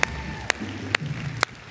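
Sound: round of applause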